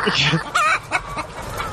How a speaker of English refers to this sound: yes, that's live from the chicken house.